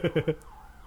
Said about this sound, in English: It sounds like the cat siren from Nightmare Before Christmas.